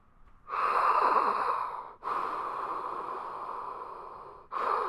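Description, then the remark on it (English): A person playing a ghost breathes heavily and theatrically in long, loud, drawn-out exhales, imitating a spooky ghost, with a brief pause between breaths and no talking. “actually just breathing heavily because he's playing the ghost.”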